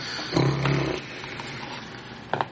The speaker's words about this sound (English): You seem to have a demon dog on your heels. Is that what that thing is?